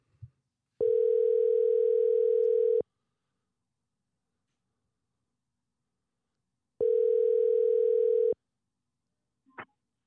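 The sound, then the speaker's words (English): A phone call is placed to a friend: two long, steady electronic ring tones sound through the handset, separated by a few seconds of silence, followed by a short click as the call connects. No one speaks. “I'm going to go ahead and get my caller on the phone because he's already heard this clip, and he wants to smoke.”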